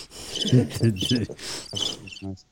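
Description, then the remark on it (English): Crickets chirp in rapid, repeating trills for a couple of seconds, fairly loud, before cutting off abruptly into silence. “Little laugh, or just some crickets.”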